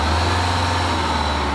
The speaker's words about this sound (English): They load us up in a bus that holds about 20 people. We then drive across the road to Graceland.